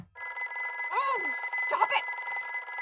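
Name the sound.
telephone bell ringing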